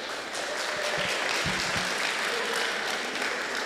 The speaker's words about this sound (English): All right, yes, that was worth an applaud. Thank you, guys.